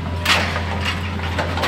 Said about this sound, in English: On a big, bare spot in this sea of paper trees, the giant claw of a Hitachi excavator grabs skinny logs out of a metal boat.